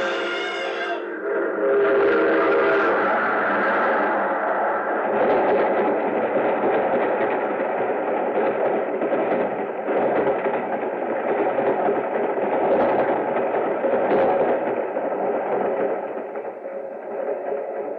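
An approaching train roars, opening with a short horn blast before a dense, steady rumble and clatter that stays loud for the whole stretch, with no voices.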